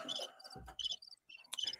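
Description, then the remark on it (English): A cricket chirping sound effect: quick, high-pitched trills, several short bursts repeating with brief gaps, heard alone with no one talking. “Yes, Crickets is right.”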